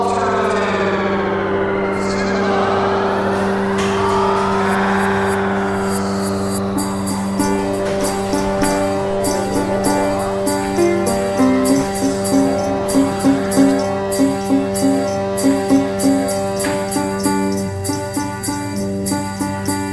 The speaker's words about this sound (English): Oh, I just created a little, just a little Christmassy theme. Little ditty. Oh, Christmassy theme. That's really nice.